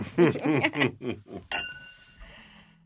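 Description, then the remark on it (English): Voices chatter briefly, then glasses clink together once in a toast with a bright chime whose high ringing tone lingers and fades over the next second. “Cheers. Cheers. Here's to Jerry.”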